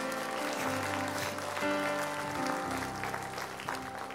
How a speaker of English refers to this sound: Let's give those a big hand clap that prayed that today.